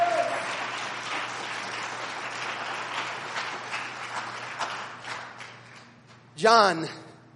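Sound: audience clapping hands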